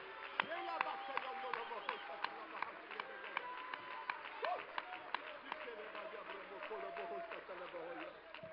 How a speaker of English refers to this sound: And everybody said in Jesus' name, would you clap your hands one more time to the Lord? Let's give him a shout of praise.